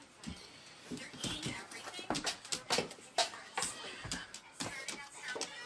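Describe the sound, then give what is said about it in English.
A dog, looking for water after knocking it all over the floor, whimpers softly while shuffling and scrabbling around, with irregular bursts of movement noise and faint breathy sounds over about six seconds. “You knocked it all over the floor, dog.”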